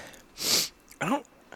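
A single harsh cough into the microphone after a retrohale, a breathy burst followed by a short throaty, voiced rasp, then quiet.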